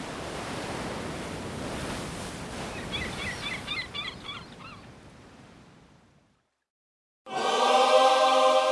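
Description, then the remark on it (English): A steady, rushing wash of ocean surf with a few honking bird calls partway through. The surf fades to silence, then a loud, unrelated tonal sound abruptly starts. “And as he walked those streets, and as he stared out at the ocean, he must have known that his destiny wasn't here, that it lay somewhere out there, beyond the waves.”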